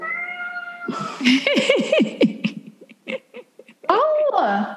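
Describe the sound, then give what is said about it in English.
A male cat meows insistently, a string of loud, drawn-out, rising and falling cries repeating over several seconds with no pause for long. “I'm just gonna run and put him in the bathroom. It's his like quiet zone because he's gonna keep doing this otherwise, and then I cannot think.”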